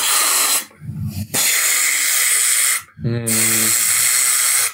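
Loud, steady bursts of pressurized spraying hiss from a fire extinguisher, cut by two brief pauses where low voiced sounds come through, then the harsh rushing spray resumes.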